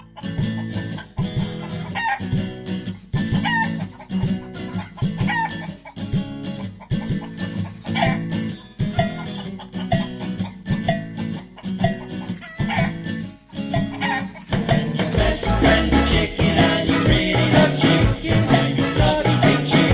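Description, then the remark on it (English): A chicken named Dr. Sparkles clucks repeatedly in a steady stream of short, insistent calls that swell into a louder, busier squawking toward the end. No one speaks. “take us out, we have the soothing sounds of Dr. Sparkles expressing the dilemma that many amateur chicken farmers face.”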